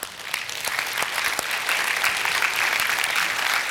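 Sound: audience applauding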